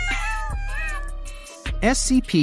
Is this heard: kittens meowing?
yes